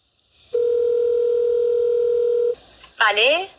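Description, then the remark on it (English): A steady, loud telephone tone hums for about two seconds, then cuts off, followed by a short pause and a brief voice answering over the line, at the start of a phone call to an aunt. “So now let's listen to the conversation I had with my aunt over the phone before my trip to Dallas over the winter break.”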